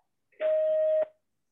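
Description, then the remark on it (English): A single steady beep from a landline telephone answering machine, held for just over half a second with a hissy telephone-line quality, fairly clear and alone with no talking. “We get a lot of robo calls. Okay, I've got a landline, and so only certain people know their landline number, so we never pick it up.”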